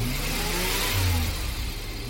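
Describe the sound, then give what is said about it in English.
A car engine revs hard as the accelerator is pushed down, a steady, loud mechanical roar with rising low harmonics, holding strong for about two seconds with no voices. “surged through my heart and I floored the accelerator.”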